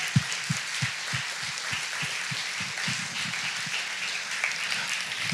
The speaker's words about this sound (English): Can we please have all the moms rise this morning so we can honor you? Moms, stay standing. Family, they deserve more applause than that. Come on, make it loud.